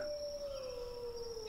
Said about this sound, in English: Oh, that was the perfect wolf howl.